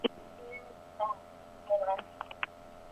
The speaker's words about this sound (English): Sorry, my phone went out. Can you hear me?